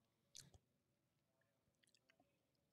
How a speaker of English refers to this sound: I've been chewing for at least 15 seconds and I'm still nowhere. So they're in it for the long haul.